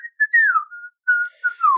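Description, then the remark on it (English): Someone whistles a short melodic tune, an attempt at a famous film theme song, clear tones sliding up and down in a few phrases with brief pauses, fairly loud, with no talking. “Oh, there was an attempt at the famous theme song of the film we're talking about.”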